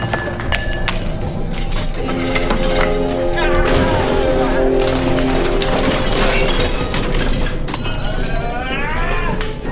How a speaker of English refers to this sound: then he proceeds to knock fruit off a platter on the coffee table. And he knocks a wine glass over